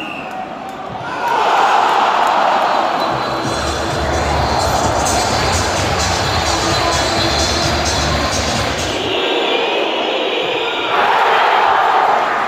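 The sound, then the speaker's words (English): A huge stadium crowd, bouncing, roars and cheers continuously during a penalty shootout, a dense wall of noise with rhythmic thumping and chanting swelling through the middle, then the roar surges again at the end. “The crowd here are bouncing. They're loving it.”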